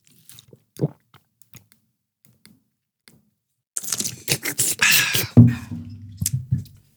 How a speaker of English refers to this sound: I would like for us drink some water. Maybe that's why I'm parched. Hold on. ASMR.